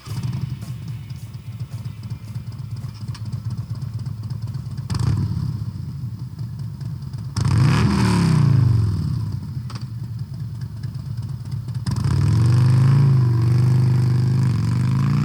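A 2017 Harley-Davidson Road King motorcycle engine idles with a low, steady rumble, then revs up twice, rising and falling in pitch before settling back into a loud idle, with no talking.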